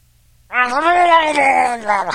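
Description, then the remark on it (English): A voice imitates a Murloc's stun yell: after a short silence, one loud, sustained, mid-pitched warbling cry holds for about a second and a half before trailing off. “And Murloc's got that really cool, that sound, the thing, the yell, the stun.”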